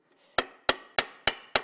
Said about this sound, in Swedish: Och så ska vi hamra lite.